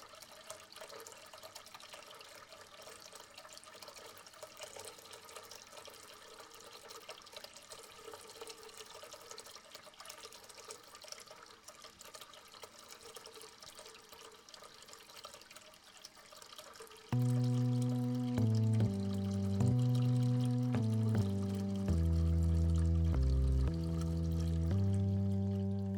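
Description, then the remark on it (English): A tap runs steadily into a filling bathtub, a constant broad rushing splash of water; after about seventeen seconds, louder melodic music begins and plays over the running water. “So I would say, fill up your bath and prepare for an hour of relaxation and inspiration while you bubble and splash in the lovely warm water.”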